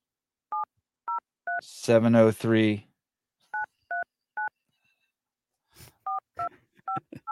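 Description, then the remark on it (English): Short, evenly spaced keypad tones beep one after another as a phone number is dialed, interrupted by a brief burst of voice, then more rapid beeps follow. “Oh shit, I called it wrong. It's 4158.”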